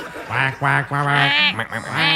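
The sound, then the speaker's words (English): Ducks quack in a quick series of about five loud, nasal calls, back to back with only short gaps between them. “leave them ducks alone.”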